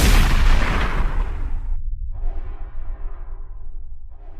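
A single loud shotgun blast opens with a sharp boom, then fades into a long rolling rumble and low echo that lingers for several seconds. No one speaks.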